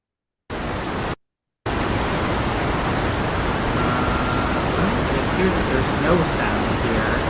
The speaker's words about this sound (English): Are you aware that there's very loud static happening? Oh, is there? There sure is. I was not, because there was no sound on my end. Oh, yeah. No, there was very loud static.